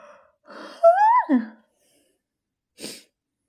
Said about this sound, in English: and now I'm gonna yawn.